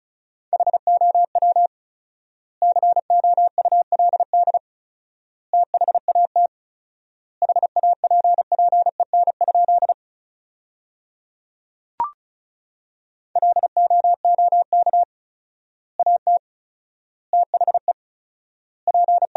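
Fast Morse code at 35 words per minute with 4x word spacing, sending sentences built from the top 400 words: a single steady mid-pitched beep keyed in rapid dots and dashes, bunched into word groups separated by long pauses, with one brief click midway.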